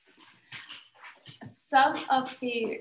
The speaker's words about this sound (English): My dogs are fighting in the background.